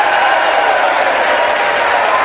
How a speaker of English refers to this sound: That's also one of the biggest applause lines.